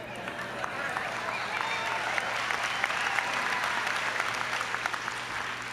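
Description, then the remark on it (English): An audience breaks into steady applause for the bees of a learning experiment, a dense wash of many hands clapping at a fairly even loudness that holds for several seconds, with a few sharper individual claps poking through. “This, yeah, let's hear it for the bees.”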